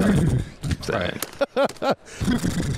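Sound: horse neighing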